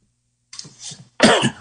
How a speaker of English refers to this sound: That's not a COVID cough. That was my coffee going the wrong way.